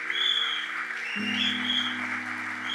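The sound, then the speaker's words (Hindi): An audience claps steadily in a dense, continuous wash of applause, while sustained keyboard chords hum underneath and shift to a new, louder chord partway through. “You're clapping for the word.”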